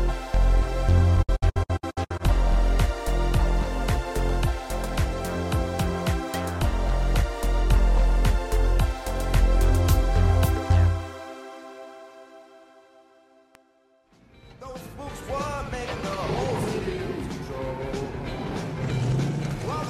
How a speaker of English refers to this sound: And that sound, of course, was the sound of Ecto-1, the car from Ghostbusters.